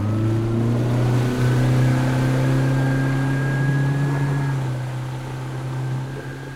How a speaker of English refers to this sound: He started the outboard, released the mooring, and disappeared. Yeehaw. Into the misty dark.